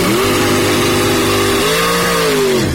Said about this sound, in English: There you go. You get a little burnout.